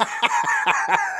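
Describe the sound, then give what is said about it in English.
A quick series of about five chicken clucks in an even rhythm, fairly loud, with a busy background of overlapping bird chatter. “How many chickens?”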